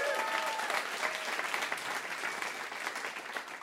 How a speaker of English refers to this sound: Another round of applause for Sean Patton.